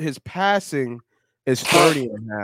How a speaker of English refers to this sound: Bless you. You just blow your nose in the joint, bro?